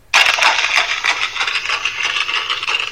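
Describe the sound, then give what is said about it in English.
Captured on a recorder: a dense, rapid clatter like horses' hooves pounding the ground at a run, bright and crackly with many overlapping hits, starting abruptly and continuing steadily for about three seconds with no voices. “My recorder captures a sound that I could only describe as horses' hooves hitting on the ground as if running.”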